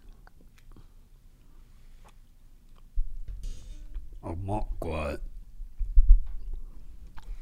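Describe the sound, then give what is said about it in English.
Wet, squelchy chewing of an oily food that drips oil and looks like a dehydrated plum, with a few smacking bites, then a voice speaks briefly over the mouth noises before the chewing carries on. “Are you going to swallow it?”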